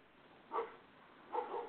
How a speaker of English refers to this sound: And we got the barking dog in the background. Yes.